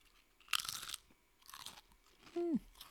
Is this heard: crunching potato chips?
yes